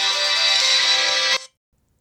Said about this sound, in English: Ooh, I got a phone call coming in. Who's coming in?